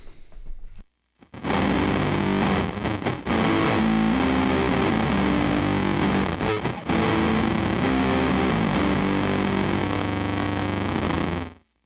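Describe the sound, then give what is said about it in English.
A guitar played through an unmodded MXR Blue Box fuzz pedal with the blend knob at 12 o'clock, giving a thick, buzzy, sustained distorted tone that rings out continuously for about eleven seconds after a brief opening strum. “Now for the unmodded version with the blend knob at 12 o'clock.”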